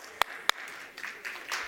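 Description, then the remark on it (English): Two sharp, isolated claps ring out, then a scattered patter of audience clapping swells softly, a crowd starting to applaud at low volume. “Look, they clap louder for you than they clap for me.”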